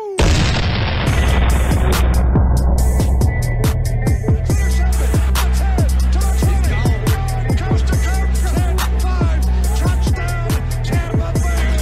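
Cannon fire in rapid succession, loud booming blasts repeating every half second or so over a heavy, continuous low rumble, with no voices.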